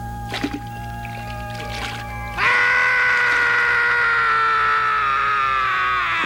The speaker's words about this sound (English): Whew, that's quite a scream from ….